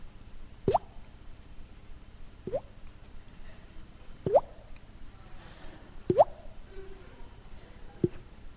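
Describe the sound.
Someone imitates dripping water with their mouth: five wet plops spaced evenly about two seconds apart, each a quick rising 'bloop' against an otherwise quiet background, with no talking.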